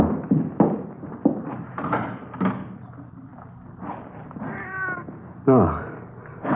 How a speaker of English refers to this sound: It's just a cat out in the street, you know, out in the side alley, maybe, huh? Mm-hmm. Probably not even in the house.